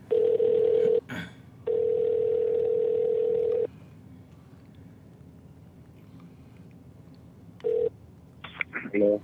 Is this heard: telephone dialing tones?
yes